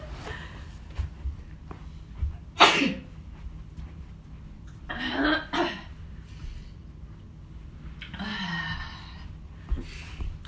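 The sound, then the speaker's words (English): Several abrupt, breathy sneezes burst out at uneven intervals, with a couple coming in quick succession and quiet pauses between them; no one speaks. “Whenever I start sneezing, that's when I know I'm at my limit, right?”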